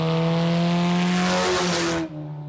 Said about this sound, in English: We'll visit with a father and son who rebuild vintage stock cars and race them along a rural racetrack in Ona, West Virginia.